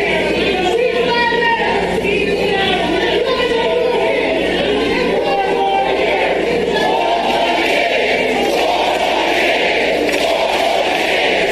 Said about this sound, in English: You're about to hear a room full of morons yell four more years.